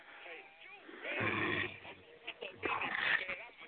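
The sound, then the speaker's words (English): Snoring heard over a phone chat line: two rough, rumbling breaths in a row, thin and muffled by the narrow telephone sound, with some faint background noise around them. “There's got this fat nigger on the chat line snoring.”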